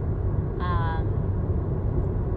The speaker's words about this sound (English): I'm recording in my car, so apologies for the poor quality.